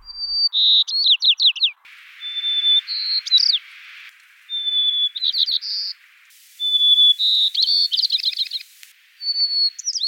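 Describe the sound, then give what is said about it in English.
A series of white-crowned sparrow songs from several different birds from Colorado and California, each opening with a clear whistled note followed by buzzy trills, repeated close together and fairly loud, with no voices. “And then in this particular species, so these are white crowned sparrows, sticks with that song for the rest of its life.”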